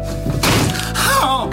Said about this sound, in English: That was him slamming his good hand into a door.